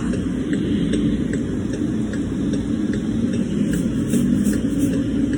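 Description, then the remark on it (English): A car engine idles at a traffic light with a steady, low rumble that holds constant throughout, joined by a faint, regular ticking. No one speaks. “And we're stuck at a traffic light.”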